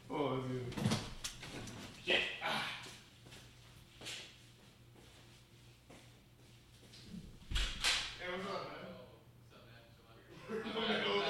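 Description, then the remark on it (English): A door opens with a few sharp knocks and clunks as a friend arrives, while people talk excitedly over and around the sounds. “That's Javi at the door.”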